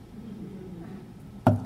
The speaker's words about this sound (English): And I continue to speak, and you stop to knock. All the way through my talk, you're knocking like this.